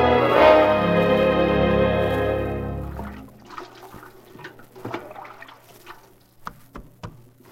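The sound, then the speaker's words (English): A loud, sustained tonal chord fades out, followed by scattered splashing and sloshing of water running over from a kitchen sink left running, with irregular drips and splatters under a low steady hum. “I left the water running.”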